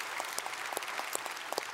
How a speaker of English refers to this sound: And I know you just applauded, but can we do that one more time to thank all the people involved? Thank you so much for all that you've done.